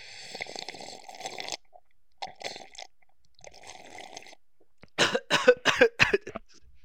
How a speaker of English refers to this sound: Excuse me. I am sorry. I choked on a little bit of my tea.